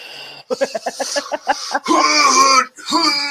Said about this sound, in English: So if I yawn, I'm gonna try to hold it up so my mouth doesn't open, yawning with my hand holding my chin up so that my mouth doesn't open too wide. It's that control yawn where you're like right.